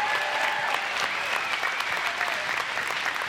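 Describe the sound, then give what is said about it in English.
An audience claps their hands as a testimony to God in a steady, dense burst of applause, many hands overlapping into a continuous crackling roar with some faint cheering voices mixed in. “If you can testify to that as a child of God, let him hear your hand clap of testimony again.”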